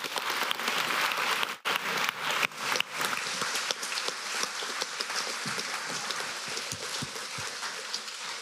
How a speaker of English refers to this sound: Thank you so much to all our speakers tonight. Can we please give them one more round of applause?